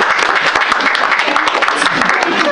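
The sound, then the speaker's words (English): An audience in San Francisco claps steadily in a dense, crackling burst of applause that holds at an even loudness for a couple of seconds, with a few voices mixed faintly in, responding to being asked to applaud if they like trap music. “Round of applause if you like trap music.”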